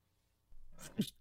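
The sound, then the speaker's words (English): A single sneeze: a quick breathy intake followed by a sharp, hissy burst, fairly quiet overall, with nothing else going on around it. “sneezing show”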